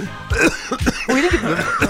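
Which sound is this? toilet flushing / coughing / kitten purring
coughing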